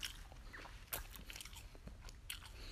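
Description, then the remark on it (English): Crisp crunching of someone biting into and chewing a grainy, hard apple, with sharp bites followed by a steady run of wet, crackly chews and no talking. “And right now it's the hardest one to chew on. But I can still do it pretty easily.”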